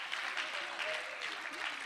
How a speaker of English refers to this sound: Can you lift your hands and clap your hands to the great God that is our provider?